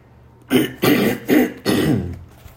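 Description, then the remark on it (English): A man with a grumbly morning throat clears it in four rough, gravelly bursts, the last one drawn out and grumbling, loud against an otherwise quiet background with no speech. “Sorry, I got a grumbly throat this morning.”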